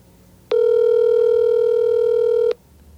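A single loud, steady ringback tone from a phone call being placed to a friend, lasting about two seconds and then cutting off, with only faint background hiss and no voices.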